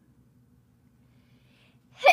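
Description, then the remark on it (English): After a stretch of near silence with a faint low hum, one sudden, loud sneeze bursts out right at the end. “Bless you.”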